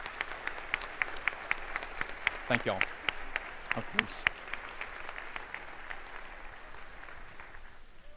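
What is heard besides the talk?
audience applause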